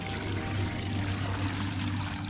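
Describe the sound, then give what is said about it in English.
Green water swirls and churns in a pool in a forgotten palace chamber, a steady, continuous wash over a low, droning rumble, holding at a moderate level without pause for the whole moment. “Meanwhile, on the other side of the palace, Thor stood in a forgotten chamber, peering into a pool of swirling green water.”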